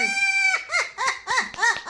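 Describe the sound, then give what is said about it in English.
A parrot gives a sinister, human-like laugh: a held, nasal note followed by about five rhythmic, arching cackles, loud and harsh, with no one talking over it. “This is a parrot with a very evil laugh.”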